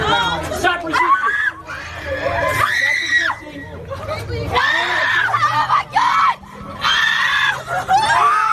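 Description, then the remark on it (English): A group of students screams loudly and repeatedly, high shrill voices rising and overlapping in waves, with crowd chatter and babble filling the gaps between the shrieks. “And you can hear the screams from the students.”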